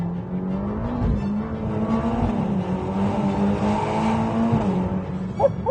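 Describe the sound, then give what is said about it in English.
A Ferrari Roma sports car's front-mounted V8 engine roars under hard, full-throttle acceleration on dry roads, a steady loud drone with rising and falling harmonics as it pulls through the revs, with a brief squeal near the end. “When you open it up, I think this actually sounds better than an F8.”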